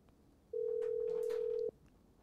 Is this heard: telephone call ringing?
yes